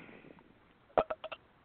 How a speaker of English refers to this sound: we're going to bring you the belch of the year